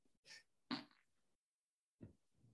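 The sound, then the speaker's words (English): A fairly loud fart: a short hissy puff, then a longer sputtering blast, and after a pause a lower, rumbling burst trails off. No one talks. “I don't want to be the fart podcast.”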